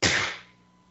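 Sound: a person sneezing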